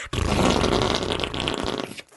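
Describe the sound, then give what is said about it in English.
A single long, loud, raspy fart lasting about two seconds, sputtering with a low rumbling buzz, standing alone with no talking. “Farts are very funny.”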